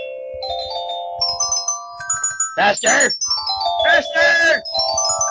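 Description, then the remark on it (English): A xylophone plays the improv theme for games, a quick melody of ringing, stepped notes that rise and fall. Bursts of loud voices yelling "faster" break in partway through while the tones keep sounding underneath. “I think that it's time for us to hear your amazing xylophone skills in games.”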